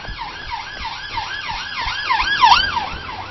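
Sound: police siren passing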